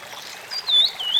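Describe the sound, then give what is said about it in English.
An ash-throated flycatcher call: a couple of short, high whistled notes that rise and dip, with the second note briefer, over a soft hissy background. No one speaks. “Wait, it's the ash-throated flycatcher.”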